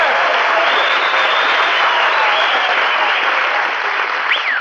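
A studio audience gives a loud, sustained ovation, dense clapping with cheers and a rising whistle near the end, steady throughout without talk.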